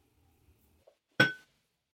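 A single sharp clink of a teacup while sipping raw tea, with a bright ringing tone that fades within a fraction of a second, preceded by near silence and a few faint soft sounds.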